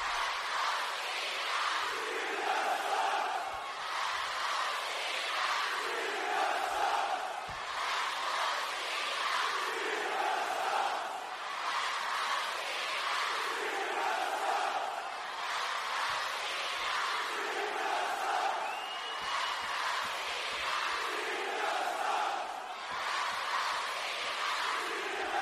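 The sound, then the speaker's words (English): A large crowd at a wrestling show chants in unison, football-terrace style. A repeating rhythmic refrain rises and falls every few seconds over a constant roar of voices. “starting chants, and in particular, football style chants at wrestling shows.”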